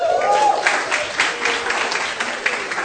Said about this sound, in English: Thank you. God bless you. Let's clap for them.